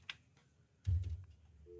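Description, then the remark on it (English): A telephone handset is picked up with a sharp click and a dull thump, then a steady telephone dial tone begins near the end, cut off almost right away. “Hey, we've got a dial tone.”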